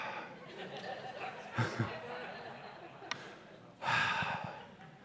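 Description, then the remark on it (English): Quiet, heavy breathing on a phone call during an awkward silence, with two noticeable breathy bursts, one short and one longer exhale, over a low steady hiss, with no clear words. “And all you hear is like breathing.”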